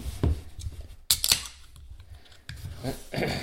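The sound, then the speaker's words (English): A beer being opened: a sharp metallic crack and a quick bright hiss, followed by softer fizzing and a second clink a moment later, with no talking. “Cool, let's crack it open.”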